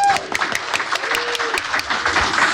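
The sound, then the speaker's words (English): A crowd cheers for JN Trax, clapping steadily and fairly loudly for a couple of seconds, dense overlapping hand claps mixed with a few whoops and cheering voices, with no speech. “incidentally, could we have a bit of a cheer for JN Trax?”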